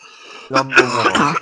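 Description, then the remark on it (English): A loud burst of harsh, raspy coughing with a throaty, clearing quality, several rough hacks running together for about a second after a brief quiet start. “God, I wish I had my cough button.”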